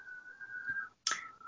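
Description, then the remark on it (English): A man, the speaker's uncle, whistles faintly in the background, holding a long steady note, pausing briefly, then sliding into another sustained note. No one speaks. “Can you hear my uncle whistling?”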